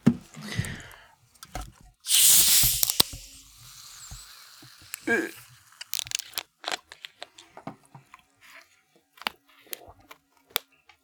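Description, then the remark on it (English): Faygo cotton candy soda bottles being cracked open: a loud, sharp burst of fizzing hiss that fades over about a second, followed by scattered small clicks, crackles and light fizz. “Let's crack them open.”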